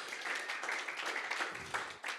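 Steady audience applause for an event's technical team, a dense wash of many hands clapping at an even, sustained loudness for a couple of seconds.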